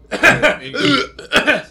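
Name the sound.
coughing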